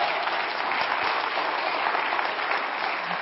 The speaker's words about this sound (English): Yeah. You can clap. Hey, let's don't go all in. Let's either clap loud or not clap at all.